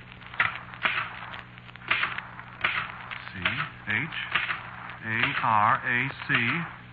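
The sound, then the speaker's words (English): Several irregular, sharp keystrokes clack from a typewriter typing by itself and underlining words, spaced out at first, then continuing under a voice that begins speaking partway through. “Look, I said I didn't write it, and the typewriter just said, no, I did.”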